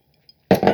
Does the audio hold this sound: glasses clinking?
yes